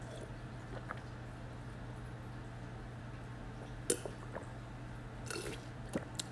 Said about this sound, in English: As I get a drink of water there.